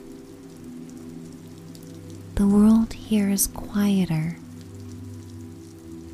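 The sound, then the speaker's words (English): Steady, soft rain falls throughout, a continuous hiss over a low background hum, while a calm voice speaks briefly near the middle. “Curls of smoke rise from chimneys and haunt the rain as they slither toward the clouds.”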